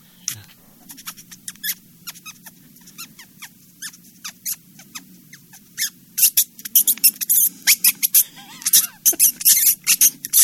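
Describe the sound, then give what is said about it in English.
A man's voice imitates rats squealing in pain, as a sound effect for the film Raiders: rapid, high-pitched squeaks and shrill chirps in dense bursts, growing louder and more frantic toward the end, with no speech. “That's not a squeak toy. That's a guy. That's a man making that sound. A poor rat.”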